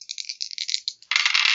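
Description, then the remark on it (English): Two six-sided dice are rolled for a perception plus awareness check in a tabletop role-playing game, rattling together with quick, bright clicks for about a second, then tumbling onto a hard surface in a louder, denser clatter and landing on snake eyes. Clear, with no voices. “That's 2d6.”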